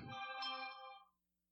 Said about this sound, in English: Turn off Bejeweled notifications. Actually, it was Q105 commenting on my post.